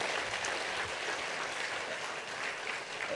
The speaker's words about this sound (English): Give the band a big, like, please, round of applause.